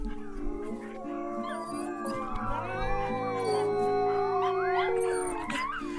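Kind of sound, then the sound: animal, dog howling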